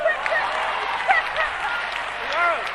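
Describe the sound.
An audience claps in a dense, steady patter, with voices calling out and rising, sliding cheers mixed into the applause throughout.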